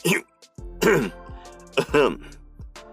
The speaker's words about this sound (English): … choked on his line. After several moments of severe coughing, he looked up with an open mouth.